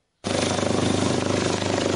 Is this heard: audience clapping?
no